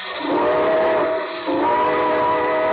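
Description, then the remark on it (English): A steam train whistle on the radio programme The Railroad Hour sounds two long, loud, sustained blasts before the train pulls out, the first briefly dipping before the second begins, with no voices present. “All aboard! Well, it looks as though we're ready to pull out”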